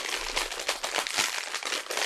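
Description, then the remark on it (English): A snack package is torn open: dense, bright crinkling and rustling of plastic wrapper with quick sharp crackles throughout, fairly loud and steady, with no voices. “Me ripping packages open.”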